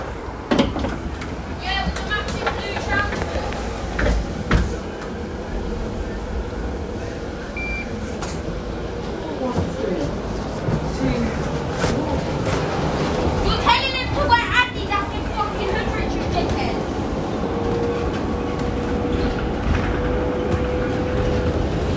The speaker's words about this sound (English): We are on the bus, and this is a typical London bus in that somebody is having an argument with someone very loudly on the back seat. I don't know whether you can hear that, potties.